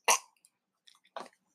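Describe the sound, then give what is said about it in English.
A wet throat-clearing cough from too much chewing tobacco: one sharp rasping burst, a few faint clicks, then a second shorter grunt-like clear a second later, with no talking. “Pardon me, too much chewing tobacco again.”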